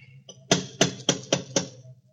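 Five firm knocks on the door of a house with gable windows, in a steady, even rhythm, each a sharp thud ringing briefly, heard alone over a faint low hum with no voices.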